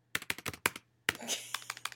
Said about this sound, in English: The sound of you typing is absurd. Is it like you would imagine? Like, exactly.